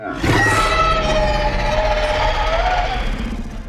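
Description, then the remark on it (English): A person voices a character's draconic roar: one long, loud, rasping bellow lasting about three seconds, with a growling low rumble and a slight falling pitch before it trails off. “Seeing my brother surrounded, I am becoming somewhat upset, and I am going to let out a draconic roar.”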